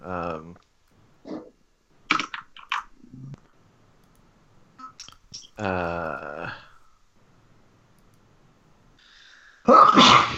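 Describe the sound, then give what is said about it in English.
A person sneezes loudly in a sharp burst at the very end. Earlier, scattered vocal sounds and short breathy noises come and go with quiet gaps between them. “Bless you.”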